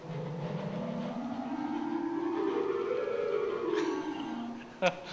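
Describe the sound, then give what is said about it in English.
A synthetic wind effect played on an organ howls steadily, its pitch slowly rising and then falling away in a long moaning sweep, ending with a brief sharp click. “Get a wind effect.”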